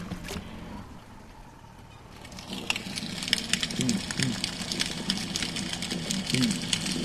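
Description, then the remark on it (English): Snapping shrimp, about an inch long, crackle densely underwater in a lagoon about 200 meters from a bridge at about 6:20 p.m., snapping their enlarged claws: a constant frying-bacon sizzle of tiny clicks that swells after the first couple of seconds, over a low steady distant motor-like hum. “They produce this frying bacon sound by snapping that claw.”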